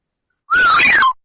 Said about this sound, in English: Wow. What was that sound? That was exciting. I don't know. That was me whistling as to how much it cost.